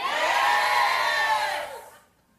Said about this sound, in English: Yes. They're yelling at me again